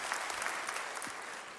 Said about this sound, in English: Come on, clap your hands and thank God. We love you, Chula Vista. God bless you.